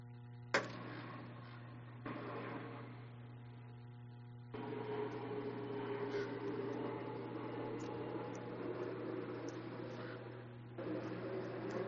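A plane's steady, droning engine roar with a low tonal hum and broad rushing noise, holding fairly even in loudness for several seconds with a few abrupt shifts in texture, and no voices.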